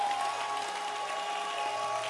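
A crowd claps its hands for the author of a book in dense, continuous applause that holds at a steady, moderately loud level throughout, with a faint sustained tone humming underneath and no voices.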